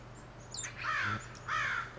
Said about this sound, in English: There it is. That weird thing. That's a barred owl.